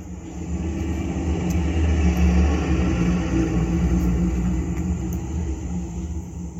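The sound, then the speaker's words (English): A bus engine drones with a steady, low rumble throughout on a trip through Las Vegas, Nevada, with a dense low-end hum and faint road noise and no voices. “We're going to get back in the bus and continue our field trip through Las Vegas, Nevada.”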